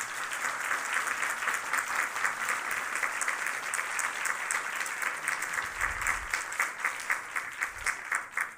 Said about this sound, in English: And if you can give one more round of applause to our incredible panelists.